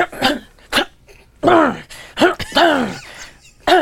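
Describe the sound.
A person imitates nervous coughing and throat clearing: a quick series of short, harsh coughs and gravelly throat clears with groaning vocal tones, fairly loud, with no words spoken.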